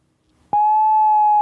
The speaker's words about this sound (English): That's tone. That's what's called tone in the business.